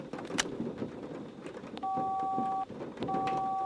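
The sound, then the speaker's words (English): Two steady electronic cell phone keypad dialing tones sound clear, each lasting under a second with a short pause between, over a rumbling, noisy background with a few faint clicks. “Well, let's see if the cell phone can get me out of this.”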